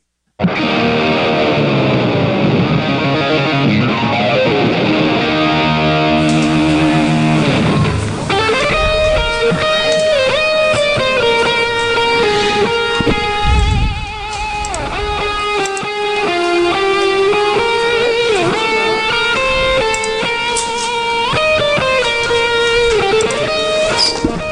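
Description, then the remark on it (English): An odd, heavily processed rendition of the college fight song Hail Dear O State from a hype video, opening with sliding, warped tones before settling into a loud, dense, distorted instrumental melody that plays on without any voices. “Well, that is certainly a rendition of Hail Dear O State that I don't think I've ever heard before, Rhino.”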